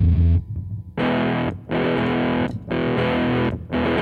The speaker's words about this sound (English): Oh, this is a really bad guitar. The other one was pretty bad. This one's real bad.